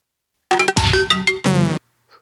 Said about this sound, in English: It's the weirdest sound that any Mac can possibly make when it starts up. The Quadra AV Chimes of Death.